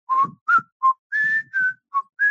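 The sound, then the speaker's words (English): A person whistles a short TV theme tune over the phone: seven clear, separate notes in a steady, bouncy rhythm, moderately loud, with no talking. “Have you nailed the, can you whistle the theme song yet?”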